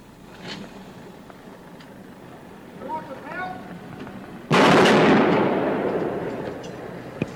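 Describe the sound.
A single loud rifle shot, fired from the observation deck of the University of Texas Tower, cracks out after a stretch of faint murmuring voices and background noise, then trails off in a long, rumbling echo that slowly fades.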